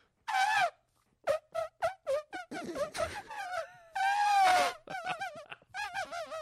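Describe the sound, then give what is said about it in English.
A voice imitates an elephant washing windows with Windex: a long high trumpeting wail, then rapid squeaky chirps and rubbing squeals, another sustained sliding trumpet call, and quick wavering squeaks, all loud with no words. “What would an elephant washing windows with Windex sound like?”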